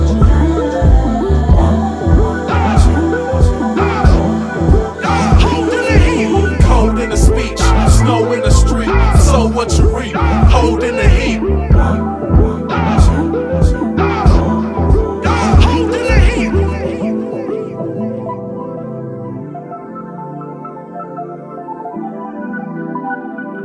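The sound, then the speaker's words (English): A hip-hop track played during a music break, with a heavy, thumping bass beat and steady percussion, playing loudly without vocals; the beat drops out near the end, leaving sustained low tones that slowly fade. “Welcome back from the music break.”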